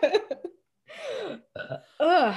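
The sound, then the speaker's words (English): A loud, throaty burp breaks into several croaking bursts, a few short choppy ones followed by longer drawn-out belches with a wavering, groaning pitch, and no talking over them. “Excuse me. Oh, that was good. I was holding that in for a while.”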